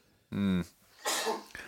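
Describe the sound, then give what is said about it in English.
A single sneeze: a short voiced, rising intake like "ah" followed by a loud, hissing burst of breath that trails off into a brief sniff. No one talks during it. “Sneezing on a podcast.”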